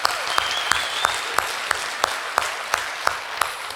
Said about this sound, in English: All right, let's give them one more hand, guys.